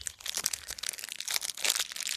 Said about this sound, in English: Let me get mine out of the cellophane so I can really examine it.